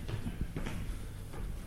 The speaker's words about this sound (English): Walking up the stairs in the footsteps of Ned Kelly. Pretty extraordinary.